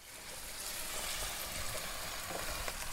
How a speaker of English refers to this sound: So, at the moment, I'm boiling up some giant butter beans, and we're going to do baked butter beans.